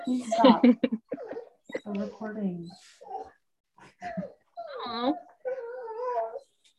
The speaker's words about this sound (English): They're very, oh, there's my dog.